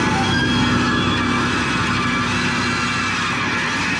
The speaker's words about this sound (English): Let me try the diamond-coated drill.